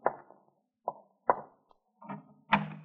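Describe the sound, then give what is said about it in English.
A French door being opened, heard as a handful of irregular wooden knocks and clunks, the last ones fuller and longer, moderately loud with no voices. “Let me in the French door.”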